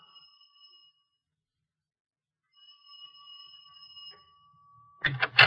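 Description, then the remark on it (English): An electronic doorbell on an apartment door at 797 Schoenberg Platz, apartment 3, rings twice in a steady, high buzzing tone, first a short ring, then a longer one after a pause, followed by a sudden louder rustling burst at the end. “I managed to climb the stairs and ring the bell on her apartment door.”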